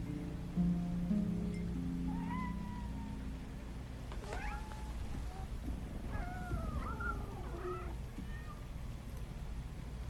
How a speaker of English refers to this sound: You got a lot of cats. I have a thing about strays.